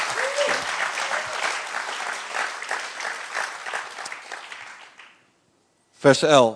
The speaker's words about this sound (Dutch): Als je dat gelooft, geef God een grote applaus. If you believe that, give God a hand.